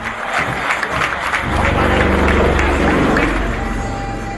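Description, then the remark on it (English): A large crowd cheers and applauds loudly as Indian Air Force helicopters fly a crisscross formation in the final display saluting Indian President Ramnath Kovind, a dense wash of claps and shouts that swells after the first second and holds steady, with a low rumble underneath. “It's a crisscross formation and the crowd goes wild.”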